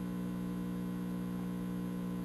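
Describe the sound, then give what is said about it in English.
A steady electrical buzz from an ozonator, a constant low hum with bright harmonic bands layered above it, droning evenly at moderate level with no speech or change throughout. “By the way, that buzz, I'm going to bring you right on over here. This is the ozonator.”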